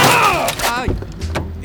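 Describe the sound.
A car hits a cyclist in a bike lane in Paris: a loud crunching impact bursts out, then a voice groans in a falling pitch, followed by two sharp thuds like metal and a bike hitting the ground.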